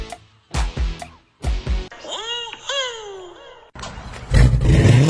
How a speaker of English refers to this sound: Man, that car sounds good. Oh, you know, it's just that Carnage exhaust I got at Troy's Muffler.